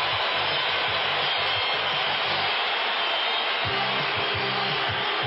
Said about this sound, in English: And listen to the crowd.